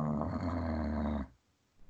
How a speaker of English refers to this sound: That was an actual growl. Did someone fart? I just growled. I don't know why, but I did.